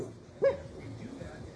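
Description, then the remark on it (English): A dog lets out a single short, sharp growl at nothing, a brief loud burst, then quiet low rumbling noise for the rest of the moment. “Stop it. You are growling at nothing.”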